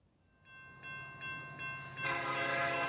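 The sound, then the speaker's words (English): An underwater train's horn sounds in steady sustained tones with short pulses, then the rumble and hiss of the train grow louder as it pulls in, its doors about to close, with no voices present. “The underwater train doors are closing soon.”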